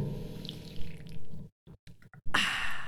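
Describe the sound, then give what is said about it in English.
Beer cans being cracked open: a few short, sharp clicks after a brief hush, then a bright burst of fizzing hiss that carries on steadily, with no voices. “So let's go ahead and crack our beers, boys.”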